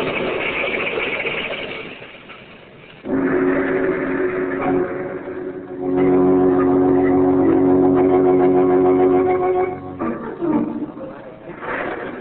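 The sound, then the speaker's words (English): A car carrying two men roars past at high speed on a main highway through a small village on a stormy night, its engine note swelling louder and holding steady before breaking off into a short burst of rough noise, like a crash. No one speaks. “They was coming down the road like grease lightning.”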